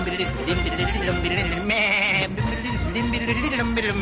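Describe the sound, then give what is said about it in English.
A nanny goat bleats loudly and continuously, its wavering, quavering cries filling the whole moment with no pause or other sounds. “And a nanny goat.”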